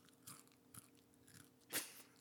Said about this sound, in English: I finally found a crunchy chip. Well, you know, the Macho's chips, they get soggy when they put the chips in them. They do. Yeah. Those chips are all new, okay. ASMR chips have to be crunchy.